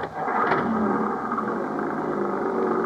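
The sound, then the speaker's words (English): An old Jeep engine roars steadily, a loud, rough mechanical drone with a brief rise in pitch near the start as it revs and pulls away onto the road, with no voices. “Mac's old Jeep would have put a mountain goat to shame.”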